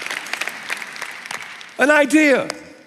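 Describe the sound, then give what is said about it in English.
A scattered crowd applauds for under two seconds with quick uneven claps, then a loud voice cuts in over the fading clapping. “I could tell you're about to clap.”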